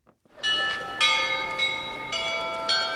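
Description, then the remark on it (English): Church bells of St. Michael's golden-domed monastery on a hilltop in Mykhailivka Square, Kyiv, Ukraine, chime to mark 1 o'clock on a sky-blue afternoon, in a steady sequence of about five bright strikes roughly half a second apart, each ringing on and blending into the next, fairly loud with no voices. “It's the 100th day of the war, and the bells chime, marking 1 o'clock at St. Michael's golden-domed monastery on a beautiful sky-blue afternoon.”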